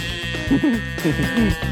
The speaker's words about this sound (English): It was a Moo box, which makes this noise.